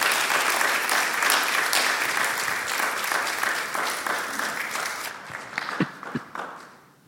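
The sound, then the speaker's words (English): A large church audience applauds steadily to welcome a guest preacher, dense overlapping claps that hold for several seconds before thinning out into a few scattered final claps. “So I would like to give you the opportunity to welcome him with your applause.”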